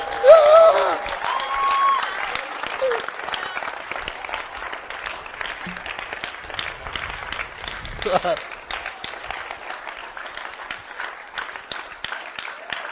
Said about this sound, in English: I think you should clap for Jesus.